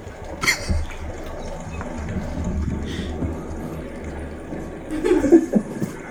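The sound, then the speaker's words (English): An odd, burbling water sound with gurgles and drips, rising in short splashy bursts near the start and end over a steady low rumble. “It was a weird water noise.”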